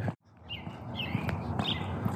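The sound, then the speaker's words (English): Birds chirp outdoors at dawn on March 7th, 2022, a few short, bright calls spaced a second or so apart, set against a steady wash of background noise, with no one speaking. “Do you hear that? The birds are chirping.”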